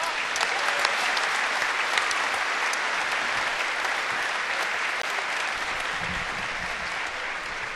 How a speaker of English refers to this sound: Please give yourself and them one more round of applause.